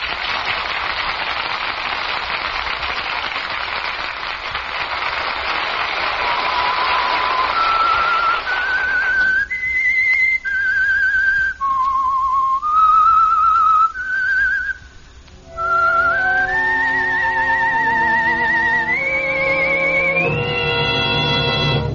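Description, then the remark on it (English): A lone whistled theme melody introducing a radio mystery drama emerges after several seconds of steady rain-like hiss, its clear notes stepping up and down, then climbing higher as richer sustained tones join near the end. “That whistle is your invitation to another Meisterbrau mystery drama presented by The Whistler.”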